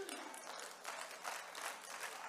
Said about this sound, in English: Now we got 15 people clapping their hands. I guess the rest of y'all not even gonna do anything, right?